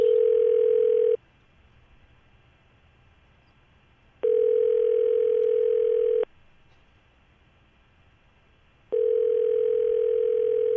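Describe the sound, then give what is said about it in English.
A phone's outgoing ringback tone: a steady, clear electronic hum sounding in long bursts separated by pauses of silence, repeating three times with the last ring cut short. No one speaks. “So we're going to make the call. Don't forget, when he answers his phone, you're hopping on and talking to him right away.”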